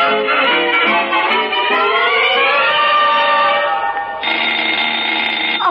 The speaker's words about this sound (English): Goodness, that doorbell is waking Daddy up, Baby Duncan. Hurry and open the door.